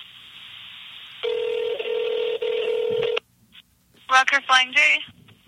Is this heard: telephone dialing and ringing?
yes